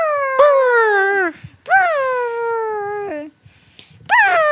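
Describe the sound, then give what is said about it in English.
A frightened cat named Zeldy lets out three loud, drawn-out yowls, each starting high and sliding down into a strained, wavering moan, with short pauses between them and the last one cut short. “This is the scared Zeldy sound.”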